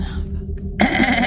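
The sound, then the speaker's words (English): A low, steady drone gives way to a sudden, loud bleat from a large, dark, matted-haired goat standing at a crossroads, a single wavering, nasal cry that carries on to the end. “You turn, and standing directly at this crossroads is a large, dark, matted-haired goat, its rectangular pupils staring from unblinking, glowing eyes.”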